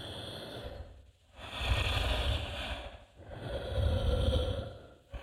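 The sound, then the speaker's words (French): Slow, heavy breathing with a snuffling, sniffing edge: three long, noisy breath cycles rise and fall in a steady rhythm, fairly loud and airy, with no talking. “sa respiration est redevenue régulière.”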